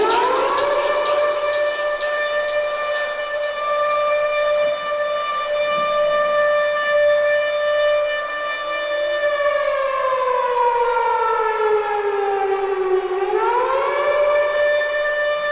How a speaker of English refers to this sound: Remember the siren. The siren.